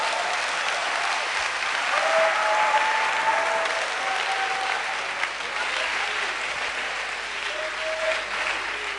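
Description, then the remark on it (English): Sustained applause from a large crowd, steady dense clapping at a fairly loud level for several seconds, with faint voices and cheers mixed in underneath. “Oh, clap for me.”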